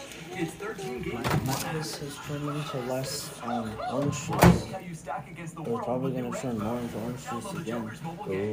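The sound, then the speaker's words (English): A microwave door, with a hamburger left inside, clunks open and later bangs shut, two sharp knocks, the second louder, while a person keeps talking over both sounds. “Bro, I forgot my hamburger was in the microwave.”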